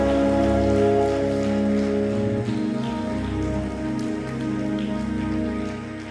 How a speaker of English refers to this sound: I want you to clap your hands and give God a praise in this house.